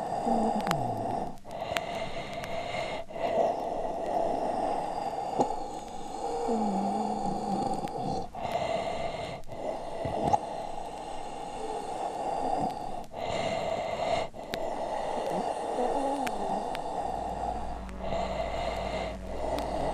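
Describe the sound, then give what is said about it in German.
Labored, obstructed breathing of a patient with expiratory airflow obstruction, with strained, wheezy exhalations and snorting, gasping breaths repeating steadily throughout, with no talking. “Sicherlich werden Sie erkannt haben, dass es sich um das typische Atmen eines Patienten handelt, der an einer Expirationsbehinderung leidet.”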